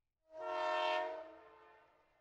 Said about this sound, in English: You see the workers getting ready to depart, and steam is billowing from the engine. You hop on the open wagon and find it is filled with fresh hay. You hear the train horn blowing,